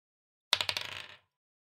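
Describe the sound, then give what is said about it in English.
A single twenty-sided die (d20) clatters across a hard tabletop, a quick run of bright clicks that speed up and fade as it settles, fairly loud, with no talking. “Just roll a d20.”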